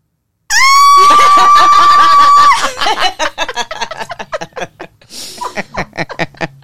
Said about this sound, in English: That's a whole thing I got to think about. Why did I scream?